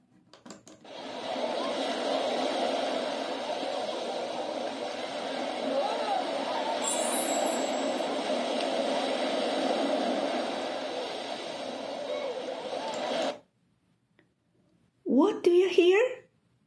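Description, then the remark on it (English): Beach ambience: a steady, loud wash of surf and wind fills about thirteen seconds, then cuts off. After a short silence, a brief rising tonal sound follows. “The answer is beach.”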